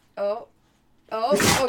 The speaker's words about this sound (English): Big sneeze, bub.